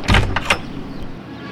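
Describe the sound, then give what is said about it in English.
A few quick knocks on the front door of a house on Eureka Street near Ponderosa Drive, followed by a short thud and rattle as the front door is pulled open by a woman wearing a hairnet. No one speaks. “I knocked, and she came to the front door, still wearing a hairnet.”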